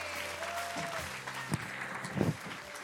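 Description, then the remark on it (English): An audience at an Ocean Church service claps their hands together in a dense, steady wash of applause, with a few scattered louder claps and faint voices rising through the crowd noise. “And if you love him this morning for being an awesome God, give him a good hand clap.”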